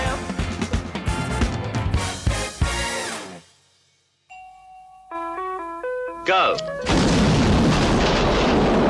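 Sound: explosion blowing doors off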